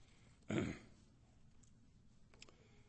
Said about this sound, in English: I have some time separating this paper.